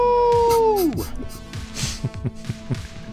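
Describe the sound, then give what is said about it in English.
A man's voice imitates a wolf howl, a sustained tone that bends sharply downward, followed by lively talking and laughter. “Why are you howling?”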